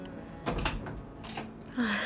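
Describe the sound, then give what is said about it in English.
A door being opened as a mother arrives: a few soft clunks and rattles of the latch, then a brief creak as it swings, with no one talking. “Ah, there's your mother at the door.”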